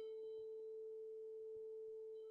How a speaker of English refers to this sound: If I play a tone here with my phone around 400 or 500 hertz, you're probably going to be able to hear that. Let me try.